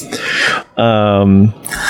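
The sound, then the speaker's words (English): A single loud sneeze: a breathy, hissing intake, a brief pause, then a strong voiced burst that holds for about half a second before trailing into a soft rush of air. “Bless you.”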